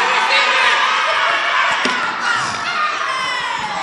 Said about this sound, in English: I don't know why they are shouting. I don't know.